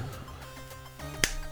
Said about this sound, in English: Oh, hold on. Do we need to do a clap first? I just did.